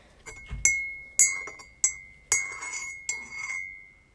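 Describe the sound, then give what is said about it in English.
A glass of strawberry fruit tea from Top Tea is tapped about five times at an unhurried, uneven pace, each bright clink leaving a clear ringing tone that hangs between strikes. No one speaks. “I just poured some in my glass because I like better sound.”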